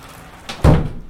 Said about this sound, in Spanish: ¡Qué bueno que ha cerrado la puerta